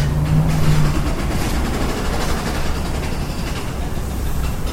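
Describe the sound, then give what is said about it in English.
Loud, continuous construction noise with a heavy, low rumbling and a rapid, grinding rattle that holds steady for the whole stretch. No one speaks over it. “Like, what is that sound actually accomplishing? Like, some sort of, like, jackhammer?”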